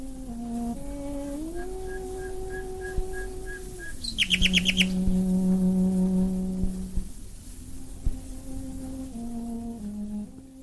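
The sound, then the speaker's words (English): Nightingale song on an old, hissy, scratchy 1920s cello recording: quick repeated chirps and a bright burst of trills midway, woven over slow, sustained cello-like tones that step between pitches. “And she was confirming just what I was saying, that you know, you can play any sound, the nightingales will join in.”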